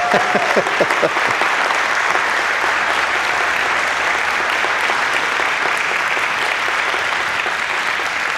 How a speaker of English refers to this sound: This second group is sharper than the first group. Did you notice that? They just clapped automatically. Yeah, they were excited.